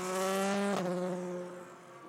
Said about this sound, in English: So with the green flag in the air, the cars start to move out onto the circuit.